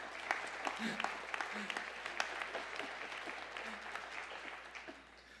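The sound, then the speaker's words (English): An audience at a sermon claps steadily for about five seconds, a dense patter of many hands at moderate volume with a few sharper claps standing out. Faint murmuring sits underneath, and the applause thins out at the end. “And as I got one clap, thank you.”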